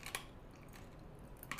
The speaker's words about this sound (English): As I crunch down on my candy here, got my little cough drop. A little effervescent today.